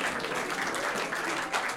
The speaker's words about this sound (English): Can you put in sound effects of like a whole crowd clapping? I will. I'll do it now.